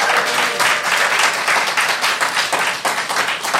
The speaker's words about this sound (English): But please, one final round of applause for both our teams.